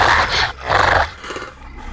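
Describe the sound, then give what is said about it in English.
A wolfish beast at a door roars twice in loud, rasping bursts, each about half a second long, then trails off into a lower, rougher growl that fades out. “Before he could say a word, the beast was at the door.”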